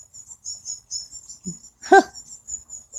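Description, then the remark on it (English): A wren near baby birds outdoors in the morning chirps in quick, high-pitched bursts that repeat steadily throughout, broken by one louder, harsher call near the middle. No one speaks. “And that's the wren making all that noise.”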